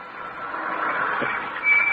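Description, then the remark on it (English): A car arriving home around 11 o'clock at night, its steady engine rumble and road hiss swelling gradually louder over two seconds, with no voices. “And there's Peavy's car. They're home at last.”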